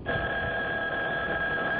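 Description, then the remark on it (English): A telephone rings loudly and steadily, one continuous electronic tone with a thin, band-limited quality that lasts for about two seconds, with no voices. “When the phone rang the day after my luncheon with Uncle Edgar”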